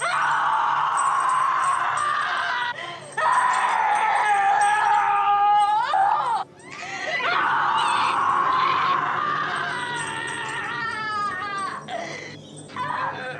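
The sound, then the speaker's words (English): A woman screams and wails almost nonstop in a film's dinner scene, loud, her voice rising and sliding in long anguished cries with only brief breaks for breath. “That dinner scene. And that screaming. It's harrowing.”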